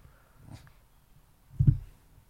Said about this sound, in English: stop that barking.